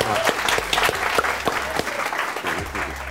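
A round of applause for a guest from a small group, dense irregular clapping with sharper individual claps standing out, steady and fairly loud for about three seconds.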